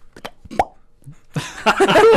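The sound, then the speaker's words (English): A few small clicks, then a scoop of ice cream plops into a freshly poured cola, followed after a pause by a loud, hissing splash of foaming fizz that splashes everywhere and fizzes up on the table. “Oh, I'm going to put some ice cream in there.”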